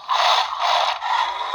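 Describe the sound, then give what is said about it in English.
A toy dinosaur from a Western sci-fi movie produced by Steven Spielberg lets out a harsh, buzzy roar that lasts about a second and a half. It is loud and raspy with a tinny, grinding quality and dips briefly partway through. No one speaks. “That is a toy from the movie we were just talking about.”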